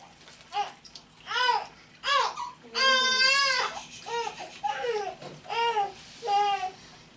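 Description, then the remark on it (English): A newborn baby girl cries in a string of short, fussy wails, rising into one long, strained howl before breaking back into choppy sobbing bursts. “And that would be my newborn daughter pissed off she can't have wings.”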